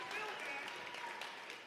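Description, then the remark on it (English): Audience applause at a county Libertarian Party event in North Carolina, greeting the newly named I Spike America Tour: a steady, dense wash of clapping at an even level for nearly two seconds, with faint voices or cheers mixed into the crowd noise. “Sure, we can applaud that.”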